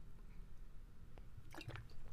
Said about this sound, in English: And hold on, I got to take a sip of water because my mouth is dry from ranting about the stars.